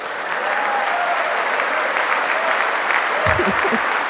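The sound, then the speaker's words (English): A steady wash of crowd applause at a political speech in Washington fills the whole stretch, dense and loud, with a brief low voice-like burst near the end. “Why would you not clap at that?”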